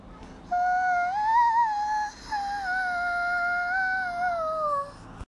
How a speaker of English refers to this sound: Even when the journey is long, follow my bird song. This is what it would sound like if you were lost within a hike.